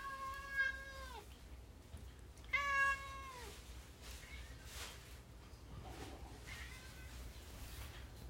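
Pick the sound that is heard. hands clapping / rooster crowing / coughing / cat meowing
cat meowing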